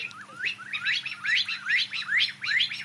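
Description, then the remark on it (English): A partridge calling in a rapid, steady series of short, rising, scratchy notes, repeated about nine times in under three seconds, clear with no voices. “So that would be a partridge.”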